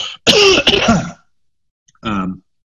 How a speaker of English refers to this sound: I'm just going to pause a second. You can edit this out. I'm going to cough. Sorry. I didn't want to cough when you were responding to me.